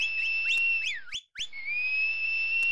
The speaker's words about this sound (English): Whistle for demons, children. Whistle for fiends. Give a high tootling blow for beasties and ferocious fanged loomers of the dark. She whistled. All whistled.